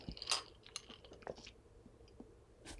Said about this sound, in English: So when I drink a cold drink like this is my point. Ice cold. I usually kind of swish it around my mouth a little bit and might look like that I'm chewing it. I'm really not.